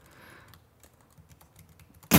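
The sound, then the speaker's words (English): Soft, quick clicks of someone typing a search on a computer keyboard patter irregularly, quiet, with no one speaking, then a sudden loud burst of noise cuts in at the very end. “Why are you typing in? What are you having to look up for this?”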